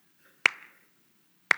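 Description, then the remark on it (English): Two sharp, crisp hand claps from a trainer standing by the side of the track, signalling to long jumper Lex Gillette when to take a step and when to jump, spaced about a second apart, each with a brief ringing tail and nothing else heard between them. “He listens for the clap of one man, each clap telling him when to take a step and eventually when to jump.”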